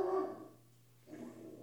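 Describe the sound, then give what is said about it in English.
A dog barks twice, a short yelp at the start and a rougher bark about a second later, fairly quiet over a low steady hum. “I'm going to kill my dog. Bark, bark.”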